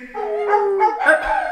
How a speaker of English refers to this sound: God, quit fucking barking, quit barking.